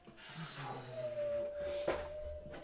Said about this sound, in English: But the wind continues.